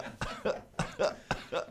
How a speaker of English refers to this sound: That is purely a tickle cough.